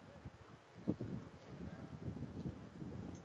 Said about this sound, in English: The wind gusts again, and that's enough to get kind of everybody to step off the mound, step out of the batter's box.